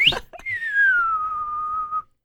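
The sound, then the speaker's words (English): Someone imitates a slide whistle with their mouth, a single whistled tone gliding down from high to lower pitch and holding for about a second and a half before stopping. “They should have added that sound effects. A little slide whistle or something.”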